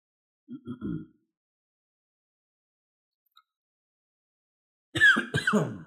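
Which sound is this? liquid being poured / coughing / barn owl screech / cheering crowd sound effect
coughing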